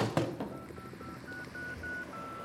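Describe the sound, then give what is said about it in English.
A telephone number is dialed: a quick, even run of about seven short, clear touch-tone beeps, following a brief clunk of the handset being picked up. “Okay, so listen, just use the phone. Do what you need to do, okay?”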